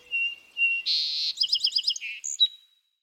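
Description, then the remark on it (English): A young songbird sings a short, complete song much like the one it heard the previous summer: thin whistles, a buzzy trill, then a rapid series of chirpy notes ending in a high whistle. No other sounds. “Then it starts putting the elements together, and eventually it's doing a song very much like what it had heard the previous summer.”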